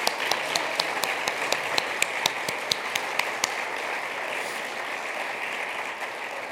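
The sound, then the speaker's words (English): An audience gives a speaker a round of applause in a steady wash of many hands clapping, with a few sharper individual claps standing out in a quick rhythm over the first few seconds before the applause continues more evenly. “If everyone wants to give a warm round of applause again for our speaker.”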